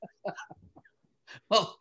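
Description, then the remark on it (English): A single sharp, loud sneeze bursts out after a brief breathy build-up, preceded by a few soft, murmured vocal sounds. “God bless you.”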